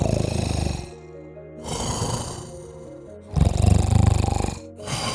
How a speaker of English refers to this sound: It blocks from the high noon heat coming from the sun, and you hear some deep, deep snores.